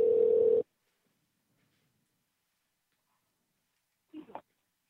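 A single short burst of an outgoing-call ringing tone over the phone line, followed by several seconds of silence and a brief voice answering at the end.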